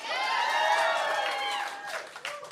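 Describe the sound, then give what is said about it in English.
An audience bursts into applause mixed with high, sustained whoops and cheers, a dense steady wash of noise that holds loud for about two seconds before thinning out into scattered claps. “Show of applause.”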